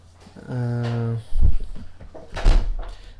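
A door creaks on its hinges, then shuts with a solid thud, followed about a second later by another heavy knock as it settles.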